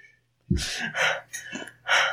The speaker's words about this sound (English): I start breathing faster and faster. And deeper and deeper.